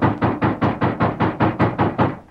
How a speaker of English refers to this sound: A moment later, heavy steps crossed his porch. And then, there was a loud knock on the door.